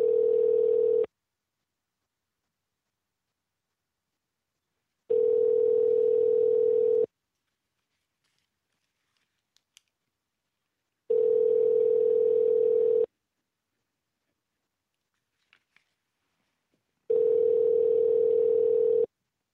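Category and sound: signal or alarm, phone call ringing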